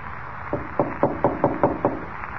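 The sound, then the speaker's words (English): Someone raps on a door about seven times in quick, even succession, each knock sharp, with only a low hum of room noise between them and no voices. “He knocked at the door and then skipped off down the corridor.”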